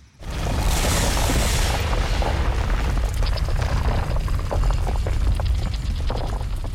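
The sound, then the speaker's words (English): A heavy stone wall at a dead end in the sewers grinds apart brick by brick after Narmak says a few words and waves a hand, revealing an archway; a loud, continuous low rumble, joined partway through by scattered knocks and clattering scrapes as blocks shift. No voices. “And Narmak says a few words and waves a hand, and you watch as this stone starts to just brick by brick move apart.”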